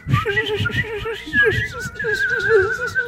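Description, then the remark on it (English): Several people imitate cartoon birds together, producing overlapping warbling, whistly tones that waver and slide in pitch, with throaty voiced bursts underneath, steady and fairly loud for about three seconds. “If this was a cartoon, there would be birds all around your head. Yeah, everybody as a crowd do the bird noise.”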